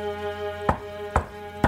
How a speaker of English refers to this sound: As the door was knocked on for the fourth time, I swung it open, already halfway through my apology, when the words caught in my throat.